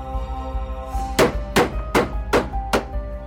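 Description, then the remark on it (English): Five evenly spaced hammer blows drive nails into the lid of a wooden box, loud, each a sharp knock striking in a steady rhythm over a low, droning background hum. “Benny closed his eyes as the first nails were put into place. He managed to make it through the hammering okay”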